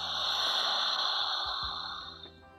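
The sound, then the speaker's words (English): A long, deep breath drawn in during a guided breathing exercise, a steady airy rush lasting a couple of seconds before tapering off, fairly loud with no talking. “One more, inhale.”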